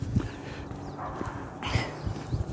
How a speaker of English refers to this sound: The dog is coming up.